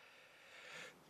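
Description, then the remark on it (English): A quiet, breathy intake of air builds for about a second, then a single sharp, loud sneeze bursts out abruptly at the very end, with no talking. “Oh, I was my sneeze. I was my sneeze.”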